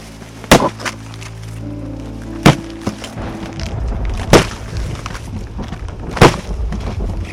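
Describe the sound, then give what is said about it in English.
Four heavy, booming blows strike a wooden front door at a slow, steady pace, each a sharp crack with a deep thud and a brief rattle after it. Loud, with no voices. “The initial thud of whatever Shane was using on the front door made me jump.”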